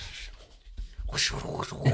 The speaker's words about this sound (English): Sound effect of shuffling.